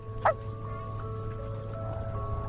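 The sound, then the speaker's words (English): A man lets out one short, sharp bark, imitating a wolf, heard near the start over a steady low background hum. “That's him barking at the end.”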